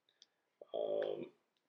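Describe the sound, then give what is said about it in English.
A few light clicks as small hard objects are picked up, then a brief rattling clatter, like dice tumbling across a table for about half a second before settling. “Which of these dice hasn't fucked me tonight?”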